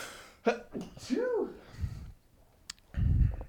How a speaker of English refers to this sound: Oh, sneeze. Sneeze.